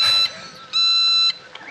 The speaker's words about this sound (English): Here is an annoying. What? Oh, world's most annoying ringtone. This is his phone.